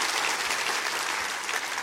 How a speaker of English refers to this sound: Clap your hands on that.